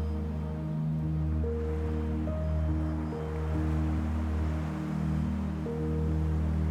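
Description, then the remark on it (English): A steady wash of flowing water with gentle, slow swells, blended beneath sustained low droning musical tones that shift pitch now and then. No one speaks. “So today I invite you to feel the energy and listen to the sounds of water.”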